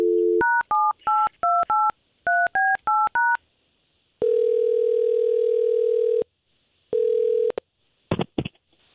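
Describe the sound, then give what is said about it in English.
A brief telephone dial tone gives way to a quick run of keypad beeps in two bursts as a phone number is dialed for a radio morning show call, followed by long steady ringing tones and a couple of sharp clicks at the end. No one speaks. “we're going to try to call Teresa and see if we can get to the bottom of it”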